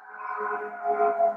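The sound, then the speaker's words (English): Sirens passing by in the city wail with a sustained, slightly wavering tone that swells a little louder toward the end, with no one talking over it. “Hold on, well, I'm just going to let these sirens pass by.”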